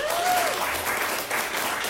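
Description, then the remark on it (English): Audience applause as the audience votes for those who believe a story, a dense steady wash of many hands clapping at a fairly loud, even level throughout, with a brief faint whistle near the start. “So first, for those of you who believe that story, let's hear it. Applause.”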